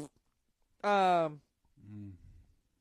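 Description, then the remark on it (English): A voice gives a short sung or drawn-out vocal sound, then a lower, buzzy mouth-made fart noise that sputters out, both fairly loud with silence around them. “One and only. With a fart noise.”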